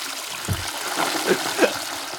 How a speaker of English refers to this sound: Oh boy. All right. I'm already going. God, get the freaking double flush.